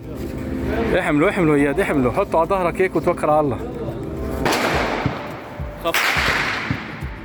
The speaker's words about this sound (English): And as they head out, you start hearing gunshots.